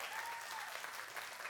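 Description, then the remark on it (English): An audience claps steadily, a dense, continuous patter of many hands at an even, moderate loudness, with no voices standing out; clapping for the news that seven kids were born again in the room at a church gathering. “Yeah, you can clap.”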